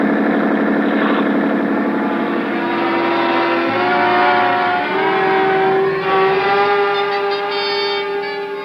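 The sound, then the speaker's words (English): A police motorboat engine roars steadily at high speed, a loud, continuous droning hum with shifting tonal whine, unbroken throughout, no voices. “Start isn't much when a schooner with auxiliary power is matched against a police boat.”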